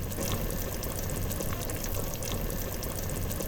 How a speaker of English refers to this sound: Well, that's the voices of the chili. It's bubbling away, man.